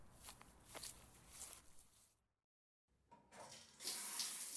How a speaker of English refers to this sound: The water's running.